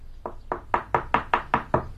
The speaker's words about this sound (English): When he arrived at Cat Cottage, he knocked on the door.